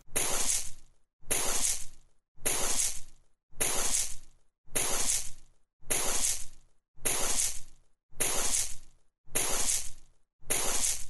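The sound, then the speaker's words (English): Digging in beach sand to make a sandcastle: ten steady, evenly spaced gritty scrapes and crunches, each about a second long with brief pauses between, bright and hissy in tone. No voices are heard. “They were digging in the sand.”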